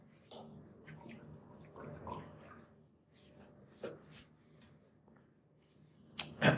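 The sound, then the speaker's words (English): Someone takes a water break, drinking water from a half-gallon jug, with quiet sloshing and a few soft gulps spread over several seconds, ending in a louder breathy burst as they finish. “excuse me, sorry, hold on, I'm gonna take a water break, 1 sec.”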